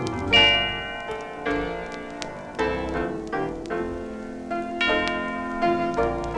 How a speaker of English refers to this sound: The Utterbach with Quiet Meditation. Hmm. Ooh, some chimes.